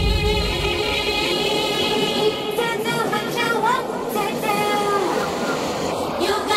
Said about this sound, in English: Train going by.